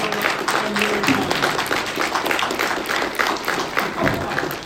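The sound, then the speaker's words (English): A crowd breaks into sustained applause, dense overlapping claps holding steady and fairly loud throughout, with a faint murmur of voices underneath. “Well, let's give a round of applause first.”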